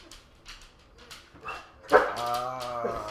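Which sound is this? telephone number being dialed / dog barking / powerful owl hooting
dog barking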